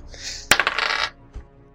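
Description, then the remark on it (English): Dice rolled for a dexterity save strike a hard surface with a sharp clack and rattle through a quick burst of bright, clattering bounces, then settle with one last small tap. No voices are heard. “Do you want to roll me a dexterity save, please?”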